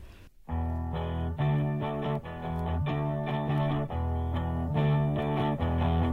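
After a split second of near-silence, a recorded rock song kicks in loud, with distorted guitar chords hammering out a steady, chugging rhythm over a thick, buzzing wall of sound.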